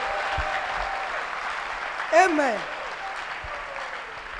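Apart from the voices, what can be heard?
audience clapping hands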